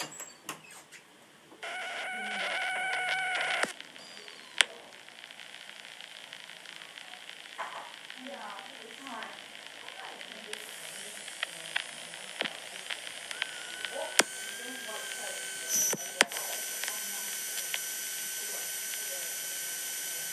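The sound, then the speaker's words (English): A Yak 52 aircraft engine starting up: a rising whine and uneven cranking sputters, then a steady, hissing drone that holds on, dotted with sharp clicks and pops. “Just put the engine on.”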